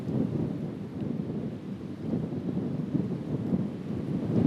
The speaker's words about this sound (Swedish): Vinden blåser sanden i ögonen och håret.